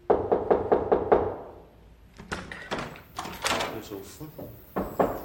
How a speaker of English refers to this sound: I've never seen any Red Cross people so aggressive in my life. They just walk in that house. Like, they open the front door and walk in.